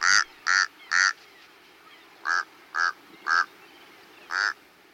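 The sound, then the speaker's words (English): A Tamaulipas crow gives seven short, nasal, croaking calls, a quick burst of three, then a pause before four more spaced out, fairly loud against a quiet background. “And at the southern tip of the country, the Brownsville, Texas dump was, for years, the only place in the U.S. you could find a Tamaulipas crow.”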